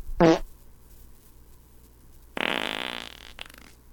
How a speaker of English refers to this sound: Tell me which fart's funnier.